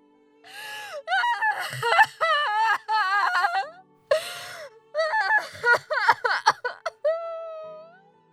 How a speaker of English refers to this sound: Resting her head on her daughter's chest as she sobbed.